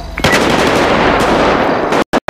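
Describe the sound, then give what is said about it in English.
Video game gunfire erupts in a loud, sustained rapid burst of shots lasting about two seconds, then cuts off abruptly, with one brief final crack between moments of silence. “Never mind, shots fired.”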